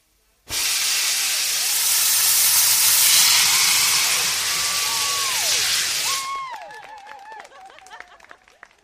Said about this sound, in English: We've just witnessed the incredible sight of a punt being blasted along the river by a trail of sparks and flames, and at a pace, I'd say faster than walking pace, but not quite a jog, it careered along the river for about 20 metres before crashing